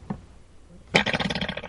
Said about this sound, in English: That is not a snake farting. No way. That's a sound effect on top of a snake video.